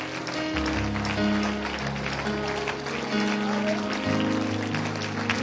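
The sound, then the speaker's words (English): A crowd claps steadily and densely throughout, giving a hand clap for a team coming in, blended with loud live music carrying deep sustained bass notes, the clapping forming a continuous bright texture over the band. “Come on, give them a hand clap. Here they come.”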